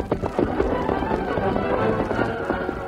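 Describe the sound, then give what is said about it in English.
Horses galloping at a steady, rapid pace along a snake-like path, their hoofbeats drumming loud in a continuous rhythmic patter for a few seconds. “After the Lone Ranger and Tonto sped along the snake-like path for a few moments, they saw horses racing around a turn far ahead.”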